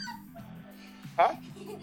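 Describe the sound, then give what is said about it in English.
A dog whimpers and gives one short, sharp yip partway through, faint and in the background beneath a low, steady murmur of someone talking, heard over a phone call. “he rides around all of Philadelphia with his dogs most of the time.”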